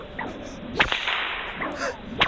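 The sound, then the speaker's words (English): Two sharp whip cracks in a cattleman's crack style, each preceded by a quick swishing whoosh of the lash, loud, with no voices. “My is a slight variation on a more familiar crack called the cattleman's crack. The cattleman's crack looks like this.”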